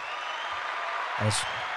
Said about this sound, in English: I couldn't remember which button it was, and so now... No, that delayed applause felt really genuine. It did.